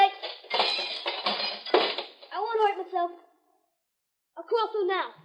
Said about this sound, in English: I'll bust it for good. That did it. All right, now I want you to climb through. But knock out all the glass so you won't get hurt.